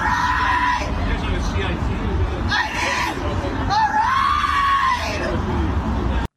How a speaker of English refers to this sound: You see that crazy chick screaming out over there? We should take her somewhere. Pick her up.